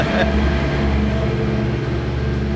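A large potato farm tractor from Simorowski Potato Farms, with wheels as big as a person, rumbles past, its heavy diesel engine droning loud and steady with deep, throbbing low tones for the whole moment.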